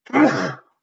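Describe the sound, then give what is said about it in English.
A single sneeze, one sharp, breathy burst lasting about half a second with a brief voiced edge, then silence. No talking. “Bless you.”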